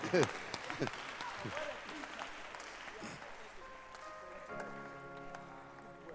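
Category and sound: crowd, audience clapping hands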